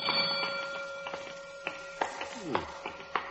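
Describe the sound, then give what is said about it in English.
A burglar alarm in Takia's jewelry store, set off by a kitten playing with the alarm wire, rings with a steady, unbroken tone that slowly fades, while sharp scattered taps and knocks sound over it. “A kitten playing with a burglar alarm wire.”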